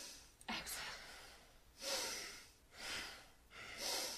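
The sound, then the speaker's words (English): Deep, forceful breaths drawn through the nose during a breathing exercise, loud, repeating in a steady rhythm of about one per second with short pauses between, and no talking. “So the breathing sounds very strong. It is strong. Breathe deep through the nose.”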